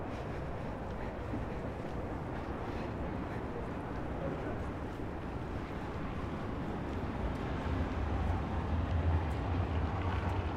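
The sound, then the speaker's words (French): Continuous low rumble of cars passing on a city street, a steady wash of traffic noise that swells a little louder toward the end. “Et ce qui est bien aussi, c'est que comme il fait plus calme avec le Covid, là on réentend les voitures, mais il y a des rues qui sont beaucoup plus silencieuses, c'est-à-dire silencieuses du bruit des voitures.”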